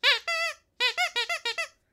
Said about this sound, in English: My donut noisemaker.